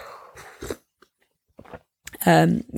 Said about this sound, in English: Swallowing blueberry muffin.